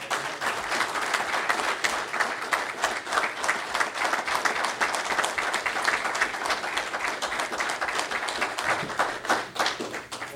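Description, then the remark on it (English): A crowd at a local union gathering claps for a retiring member after 43 years, in sustained, dense applause for about ten seconds, many hands overlapping in a steady, fairly loud wash of sharp claps with no voices on top. “And I think he deserves a huge round of applause.”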